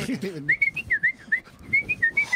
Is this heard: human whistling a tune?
yes